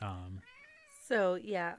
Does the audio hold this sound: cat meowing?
yes